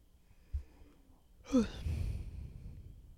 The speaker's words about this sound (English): Sorry for those who hear me yawn.